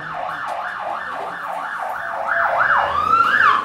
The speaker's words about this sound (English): Outside casualty, the ambulance we heard of earlier arrives with a man who has collapsed.